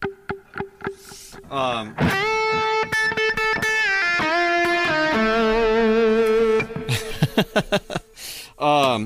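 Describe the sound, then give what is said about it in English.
An electric guitar played through a Kemper with a cut-through-the-mix EQ, a quarter-note delay and a little spring reverb plays a short phrase of ringing notes and chords, with echoing repeats and a reverb tail. Brief bursts of sound come at the start and end. “And then obviously just probably like a quarter note delay, and then a little bit of spring reverb, I think.”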